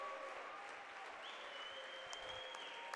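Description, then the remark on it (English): A large crowd at a basketball game cheers and applauds steadily, on its feet in the final seconds as Cros-Lex wins 55-35, a dense roar of clapping and shouting with a high whistle cutting through midway, loud and sustained throughout. “The crowd is on their feet.”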